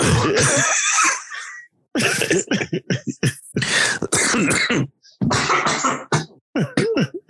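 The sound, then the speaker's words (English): A loud coughing fit: harsh, rasping bursts come in rapid clusters with brief gaps, mixed with throat-clearing sounds, and no other sound between them. “Hey, got me coughing.”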